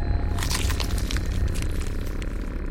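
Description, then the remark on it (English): Meat being torn apart, a piece torn off a hunk of meat to eat: a steady, wet, squishy ripping with small crackling and crunching bursts throughout, moderately loud, and no voices. “She went to a table and picked up what looked like a hunk of meat and tore off a piece and began to eat.”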